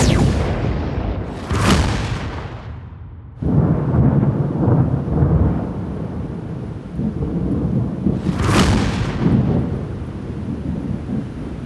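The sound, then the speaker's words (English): Loud lightning strike effect as Storm fries Volta with a lightning bolt: a sharp crackling bolt hits early, then a heavy rolling thunder rumble builds, with a second bright crack near the end over continuous booming. “When her power runs out, Storm fries her with a lightning bolt and she reverts back to her mortal form”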